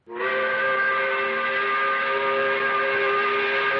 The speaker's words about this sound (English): 5 o'clock whistle, appropriately brought to you by Katie's.